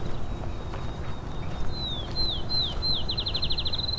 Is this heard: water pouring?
no